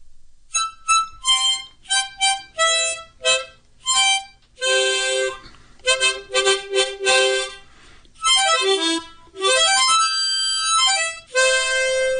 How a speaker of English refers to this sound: Here comes a harmonica.